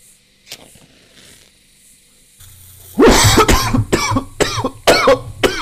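A quiet inhale of smoke from a one-hitter, then a loud fit of harsh, hacking coughs, about five or six bursts in quick succession, with a low hum underneath.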